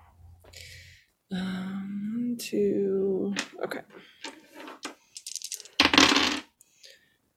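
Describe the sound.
Dice being rolled for a wits and awareness roll clatter and rattle across a hard surface in a quick burst of sharp clicks, joined by a louder final tumble, with brief murmured voice sounds in between.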